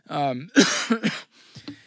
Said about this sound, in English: Sorry for the coughing. Hopefully by next week I'll be 100% better. It's good, and then I start talking, and it gets bad again.